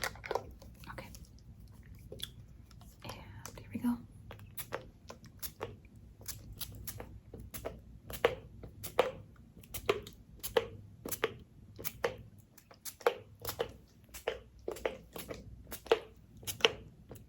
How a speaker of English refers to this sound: Okay, so I brought this sleeping spray. And we're gonna spray it all around you and on the blankie I gave you and on your pillows to help you fall asleep, okay?